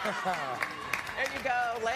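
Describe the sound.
A crowd cheers loudly, many voices shouting at once, with a few sharp claps cutting through the noisy, continuous roar of the audience.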